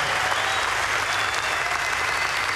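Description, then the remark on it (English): A large crowd of golf fans applauds steadily at the champion golfer ceremony for Colin Morikawa, a dense wash of clapping with scattered cheers and whistles rising above it, loud and sustained throughout with no break. “Let's hear it for you guys.”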